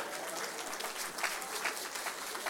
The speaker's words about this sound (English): Come on, put your hands together for the Lord.